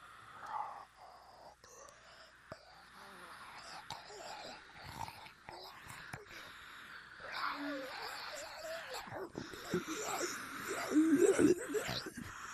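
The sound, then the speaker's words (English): Two zombies growling together, with low, raspy, breathy snarls overlapping for about twelve seconds, rising in intensity toward the end with a few rougher, higher-pitched rasps. “They growl at you, and it's kind of both of them together. They kind of growl in harmony.”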